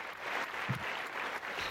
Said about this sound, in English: Well, I'm just going to let that keep clapping.